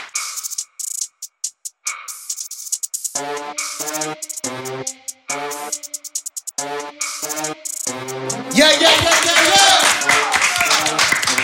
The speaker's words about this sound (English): Y'all clap it up for Jamal Crawford. Appreciate it.